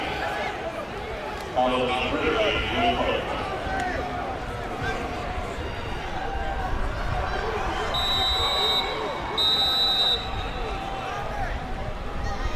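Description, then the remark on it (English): A referee's whistle at a football game between Monmouth and Middle gives two sharp, high-pitched blasts in quick succession on fourth and 2 as Monmouth's punt team comes on and Middle calls a timeout, cutting through a steady roar of crowd noise and murmuring voices. “Whistle sounds and Middle may have to call a timeout here.”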